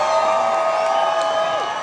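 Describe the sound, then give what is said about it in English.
A rock concert crowd in Denver cheers and claps in a steady, dense roar, with high whoops and whistles rising above the sustained applause throughout. “Is there anybody here, I gotta ask this, is there anybody here seeing us for the first time? We got applause.”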